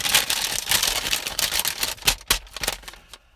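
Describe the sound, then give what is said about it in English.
A sheet of paper is taken out, crinkling and rustling for a few seconds, a busy run of dry crackles and sharp little snaps that thins out toward the end, with no one talking. “I gotta get my paper out.”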